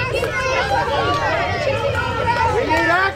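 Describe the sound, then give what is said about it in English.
A large crowd shouts outside the Sacred Heart Catholic Church in Uvalde, Texas, after a Sunday mass as President Biden and the First Lady walk out, many overlapping voices yelling "Do something" at once in a dense, continuous clamor that cuts off abruptly. “As that crowd yelled, "Do something," President Biden told them, "We will."”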